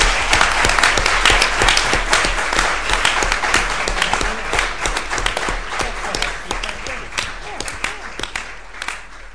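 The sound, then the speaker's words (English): A crowd claps in sustained applause for the shortlisted prize winners, a dense wash of many hands with sharp individual claps standing out, holding steady before gradually thinning toward the end. “So a round of applause for all those shortlisted winners, please.”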